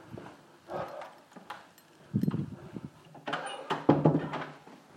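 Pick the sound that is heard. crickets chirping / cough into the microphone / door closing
door closing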